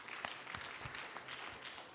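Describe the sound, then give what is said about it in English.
An audience claps steadily for a man who has just spoken, a dense wash of overlapping hand claps with a few sharper individual claps standing out, sustained at an even moderate loudness throughout. “So let's clap for him.”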